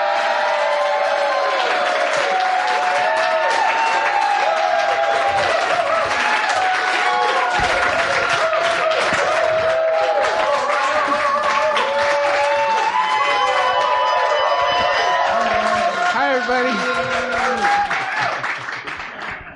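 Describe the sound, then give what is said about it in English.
A crowd at a gay wedding at Smodcastle breaks into sustained applause mixed with whoops and cheers as the two grooms are welcomed out, dense and loud throughout, with excited voices rising over the clapping before it tapers off at the end. “Nobody ever applauds the straights, man.”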